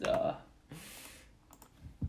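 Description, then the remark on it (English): A few quiet, scattered clicks of typing on a computer keyboard, faint, with a brief hissy rustle partway through and a short vocal sound at the start. “you're not typing.”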